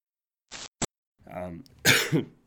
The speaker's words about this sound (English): it's okay. We'll fix it in post. Edit out the cough.